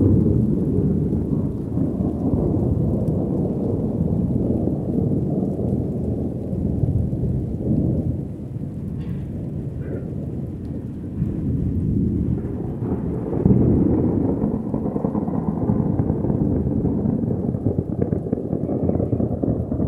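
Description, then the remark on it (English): Low, sustained thunder rumbles from a distance beneath a steady wash of falling rain, the dense roar continuous for the whole stretch with no voices present. “Silence except for the rumbling thunder in the distance and the falling rain.”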